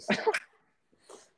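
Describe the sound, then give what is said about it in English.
A dog lets out one sharp bark, then after a short pause gives a softer, higher whimper. No one is talking. “Hold on, my dog.”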